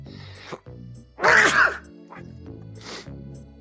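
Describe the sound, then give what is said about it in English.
A single loud sneeze bursts out after a brief quiet intake, followed moments later by a softer, shorter breathy burst, with no talking. “Let's give them something to sneeze about.”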